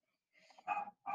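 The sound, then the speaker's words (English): A dog, Marshy Faith, barks twice in quick succession downstairs, muffled, with a softer grumbling lead-in before the first bark. “And we have some barking going on downstairs from Marshy Faith.”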